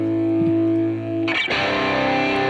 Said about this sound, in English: But I think I ran this through a couple different guitar amp simulators, and I don't remember if I did anything else on it, but this is what those guitars sound like. by themselves. You can even hear the buzz.